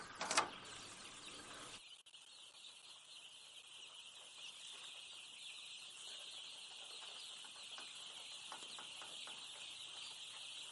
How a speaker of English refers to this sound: Here we are in the skid house. There's 1,000 broiler chicks here. There's a partition, as you notice, running right through the middle of the skid house. That is to part the two groups. So there's 500 in each section.